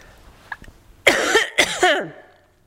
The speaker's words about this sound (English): I'm gonna cough here, hang on. Let me mute this for you guys.